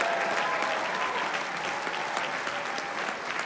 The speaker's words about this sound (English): If you receive that, go ahead one more time in Florida. Clap your hands and give the Lord a mighty shout.